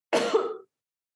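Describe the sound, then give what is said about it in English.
A single abrupt, breathy burst, half cough and half sneeze, from a woman with allergies, fairly loud, lasting about half a second before silence. “That was a cough and a sneeze combined.”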